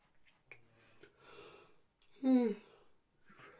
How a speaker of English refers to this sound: All this freaking yawning's bothering me. Yeah. I know I got up at like 6 a.m.